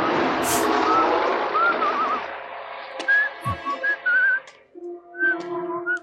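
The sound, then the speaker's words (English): A man whistles a short, wavering tune in bright separate notes with a few trills, broken by brief pauses. A rushing background noise fills the opening seconds and then fades. “Yeah, terrifying would that be if a tow truck driver just walked up to you whistling?”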